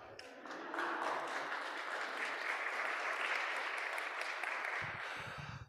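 A church audience in a sanctuary breaks into steady morning applause, many hands clapping together in a dense, sustained wash that holds its level for several seconds before tapering off at the end.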